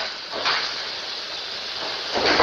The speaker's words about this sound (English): And so that's what a thin aluminum sounds like when it crackles.